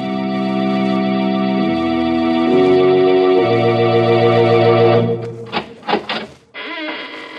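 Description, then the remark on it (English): The squeaking door opening of the radio show Inner Sanctum Mysteries: a long, drawn-out creak in a steady, harmonic whine that shifts pitch in steps, then breaks into stuttering squeals before one final short creak. It is loud, with no voices. “When you heard the sound of the squeaking door, it was exactly 30 seconds past the hour for murder.”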